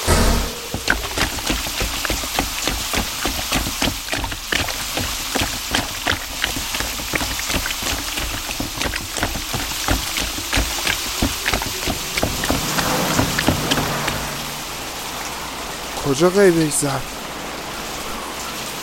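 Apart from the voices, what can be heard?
rain falling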